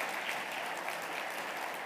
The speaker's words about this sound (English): Hey, give him a round of applause.